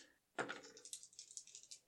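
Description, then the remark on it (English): Dice tumble out of a cup with a sharp initial clack, followed by a quick scatter of bright, irregular clicks and rattles that gradually thin out. No one speaks. “Somebody give me a set of dice. Here, take these. Take this cup.”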